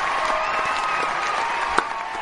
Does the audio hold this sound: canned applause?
yes